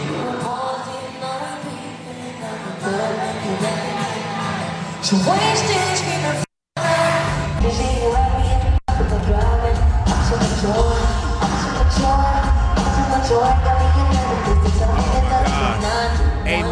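A large crowd sings along loudly with music, voices blending into a steady, dense roar with occasional yells and whoops; the sound cuts out briefly twice partway through.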